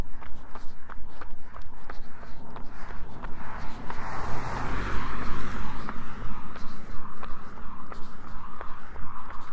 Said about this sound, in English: Car coming up on the right side.